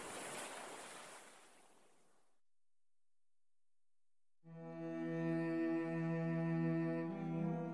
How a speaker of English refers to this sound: found the sound of the waves quite soothing and peaceful. I have never heard a voice whispering to me.